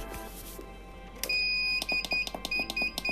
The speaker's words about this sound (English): I want to brew up some ozonated water. Now is a good time to do that. I've got an alarm on my phone.